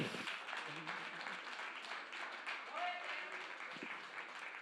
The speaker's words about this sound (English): Come on, clap your hands for Jesus.